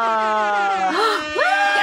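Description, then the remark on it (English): A loud, brassy air horn blast holds one steady tone for about a second, then breaks into quick rising and falling wails. No one speaks. “Did you just get an air horn?”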